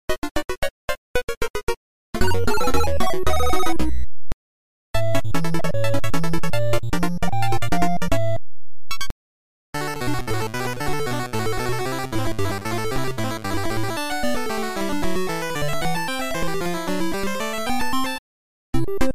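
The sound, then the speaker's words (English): Bleepy music from the arcade game Donkey Kong 3 plays loudly in several short bursts separated by brief silences. Buzzy square-wave melodies run over a bouncing, pulsing bass line, with no talking. “In case you've never actually heard the music of Donkey Kong 3 in the arcade, you're about to.”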